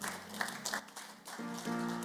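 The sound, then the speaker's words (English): An audience, risen to its feet, claps for the Lord together in a dense, steady burst of applause lasting about two seconds, with a sustained low tone humming underneath toward the end. “Rise up on your feet and give the Lord a mighty clap.”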